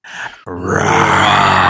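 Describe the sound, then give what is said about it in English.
A voice imitates a roar: a short breathy lead-in, then a loud, sustained, gravelly growl with a low rumbling pitch that swells and holds for over a second. “Roar.”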